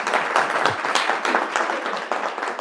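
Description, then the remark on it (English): A crowd at a Talmud study session breaks into sustained applause to welcome a rabbi who has come from Muncie, a dense wash of many hands clapping at once, steady and fairly loud throughout with no voices standing out. “You got to give him a round of applause.”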